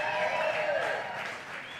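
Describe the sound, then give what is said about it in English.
An audience claps and cheers steadily for the speaker's 34 years of marriage, a loud dense wash of applause mixed with whooping voices that holds for a couple of seconds and eases slightly toward the end. “No, you can cheer a little bit louder than that.”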